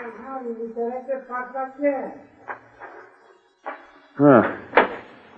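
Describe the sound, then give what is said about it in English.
A door is worked open with a few sharp clicks and clunks, ending in a louder creaking, thudding swing. A voice murmurs briefly before the handling starts. “Now get this door open”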